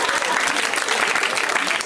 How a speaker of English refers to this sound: I always wanted one of those jokes where you get claps at the end because you finished it.